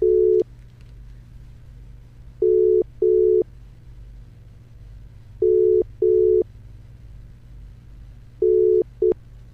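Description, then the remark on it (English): A phone dial tone plays as short paired beeps, repeating about every three seconds, clear and steady over a faint low hum, with no one talking. “A phone mom in now. Let's have a, there we go. Let's get her on the line.”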